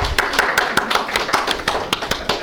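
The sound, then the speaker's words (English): Light, polite golf-clap applause: a steady run of soft, crisp hand claps, about five per second, fairly quiet, with no voices over it. “Golf clap.”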